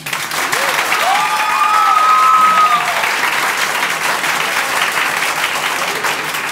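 Steady, dense audience applause fills the whole clip at a loud, even level, with a few whistles and cheering voices rising briefly over the clapping near the start.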